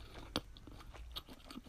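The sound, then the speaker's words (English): Crunchy chewing on cooked chicken with a sharp bite at the start, followed by several irregular crackling crunches and wet mouth sounds, moderately loud with no talking. “And I'm out here indulging on their remains. Man. It tastes so good.”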